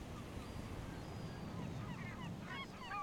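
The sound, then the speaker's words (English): Birds call in quick, chirping bursts that grow busier toward the end, set against a steady low rush of waves or surf near the shore of a temple. No one speaks. “You're starting to hear birds again because you're close to the shore of the temple.”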